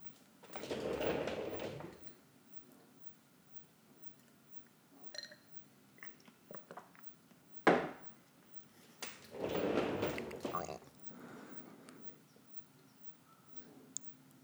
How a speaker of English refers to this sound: You may have noticed the sounds of the chair rolling and the mug or the glass, the water's in a glass, hitting the table when I put it back down. Don't worry about those.